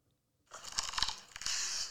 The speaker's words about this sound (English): No, it's about bread. listen to the crunch this bread makes, okay?